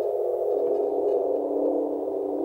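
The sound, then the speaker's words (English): A sustained synth tone with a warbly tape-effect wobble, held steadily for a couple of seconds with added reverb giving a soft wash around it and no voices. “I'll show you the full range of this too. Let me change which. A little more of a reverb.”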